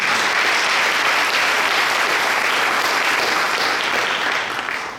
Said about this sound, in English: Can we clap on that?